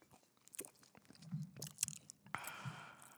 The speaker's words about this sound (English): Hey, you gulping that shit, nigga.